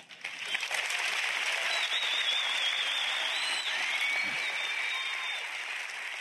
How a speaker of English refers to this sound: Well, I know you probably want to stand up and clap right now too, right? I mean, that's what happened in the room as they finished this talk.